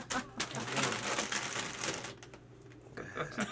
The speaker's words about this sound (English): Make sure you get the crunchiest, crinkliest stuff, too.